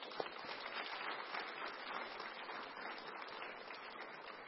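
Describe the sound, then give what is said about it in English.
A church audience claps for newly introduced deacons, a dense, even wash of many hands applauding steadily for several seconds with no voices on top. “Can you guys give those people a round of applause?”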